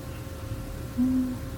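A single low, steady hooting call from a bird outside the room lasts about a third of a second, sounding faint against quiet room tone, with no one speaking.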